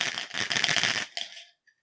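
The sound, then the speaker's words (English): Twenty-sided dice clatter and rattle across a hard surface for about a second and a half, rolled in the game Dice to Meet You, then settle with a faint final tap. No one speaks. “And you roll it, and the number that is showing, I have to describe myself in that number of words.”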